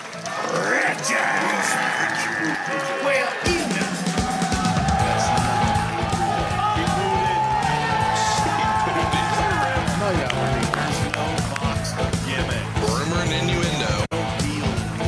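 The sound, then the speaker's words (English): A live audience cheers and yells loudly and continuously for about fifteen seconds, applauding comedians on stage, a dense wall of crowd noise with scattered whoops and shouts rising out of it. “Clap for them, too.”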